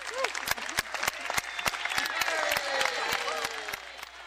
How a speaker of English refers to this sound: Yeah. Well-deserved applause there for heroic action yesterday,